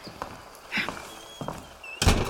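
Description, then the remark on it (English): A handful of soft, irregular footsteps thud across a hard floor as a man walks away, moderately quiet, ending with a louder, fuller thump. No one speaks. “And he's walking away.”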